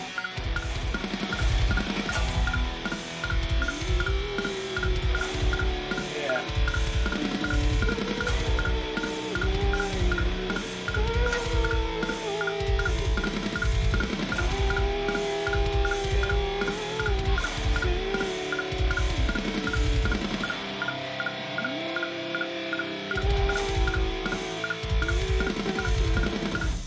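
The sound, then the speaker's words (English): Simple, chunky power chords ring out loud over a steady driving drum beat, continuing for nearly half a minute with a brief drop in the low end near the end and no talking. “Bring on them big dumb chords.”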